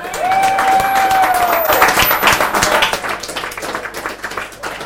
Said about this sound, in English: So the first three people we're going to ask up, and I want you to give them a big round of applause when they come up,